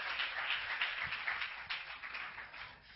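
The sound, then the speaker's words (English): An audience claps one more time as they are being seated, in a steady, dense patter of many hands, sustained for a few seconds at a fairly soft level with no voices. “Clap your hands one more time as you're being seated.”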